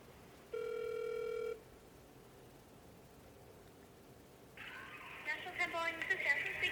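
A single steady electronic telephone ring, about one second long, sounds over a quiet background, then after a pause a busier, muffled burst of sound follows.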